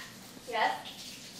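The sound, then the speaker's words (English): A short vocal burst imitates splashing water, as if at a pool: a single bubbly, gurgling swell lasting under half a second, with quiet background around it. “She's just making the water noises.”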